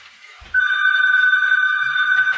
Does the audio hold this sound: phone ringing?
yes